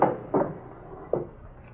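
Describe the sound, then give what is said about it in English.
A drawer in an apartment, holding a .32 gun, is pulled open with a few short wooden knocks and scrapes spread over a couple of seconds, then it goes quiet. “In that drawer over there. Yeah, this one over here?”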